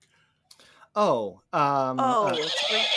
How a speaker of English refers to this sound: Oh. Heard a horse,